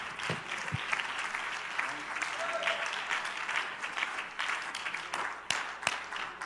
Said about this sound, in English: Would you give the Lord a big hand clap of praise?